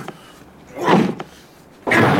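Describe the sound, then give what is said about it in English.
An axe hacks at a locked door to a back room: two loud, splintering blows about a second apart, the second heavier and longer, with a sharp knock in between and no talking. “The door's locked. Not for long. Here, give me the axe.”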